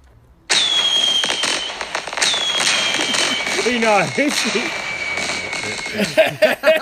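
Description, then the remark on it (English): Sharp crackling bursts and whistling tones, like fireworks going off, fill the scene with a steady high hiss; a person speaks briefly underneath the noisy, popping display. “To do with the fireworks, you obviously like fireworks.”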